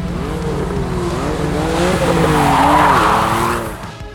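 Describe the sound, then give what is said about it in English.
A car engine roars and wavers in pitch while tires skid and squeal loudly as the car races off a ramp made from a mound of dirt, building to a harsh screech before cutting off abruptly, with no voices present. “when you say you did not drive a stranger's car off”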